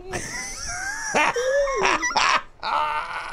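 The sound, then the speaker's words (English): A person imitates a barking seal, letting out a few loud, raspy honks and yelps in quick, uneven bursts, with strained, squealing vocal tones between them. “You look like a porpoise, like a seal when you do it.”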